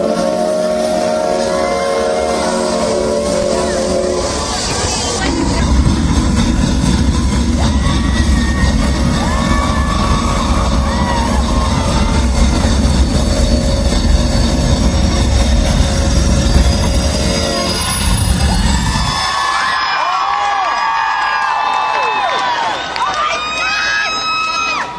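At a concert as a band comes on stage, a train rumbles past with heavy low-end rolling noise and high, drawn-out wheel squeals, then fades into a crowd murmuring and cheering in the background.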